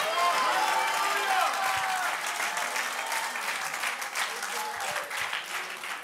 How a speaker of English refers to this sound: That's why it's important to lift your voice. I don't care if you don't feel like it. I don't care if your feet hurt. I don't care if you got a headache. Just clap your hands unto the Lord and shout hallelujah.